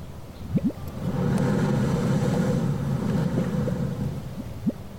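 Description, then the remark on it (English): A geyser erupts in a field in front of a cabin, shooting water dozens of feet into the air as the ground shakes, with a steady, loud roaring rush of water over a deep ground rumble, swelling in after a few brief knocks and holding for several seconds before easing off. “Out in the field before this cabin, a geyser of water shoots dozens of feet into the air.”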